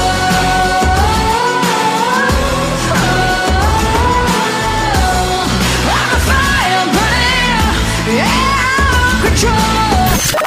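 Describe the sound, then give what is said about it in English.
Loud, wailing screams rise and fall repeatedly over a dense, dramatic musical backing, filling the whole stretch with frantic vocal cries. “Go ahead, scream.”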